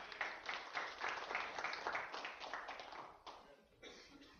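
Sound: audience round of applause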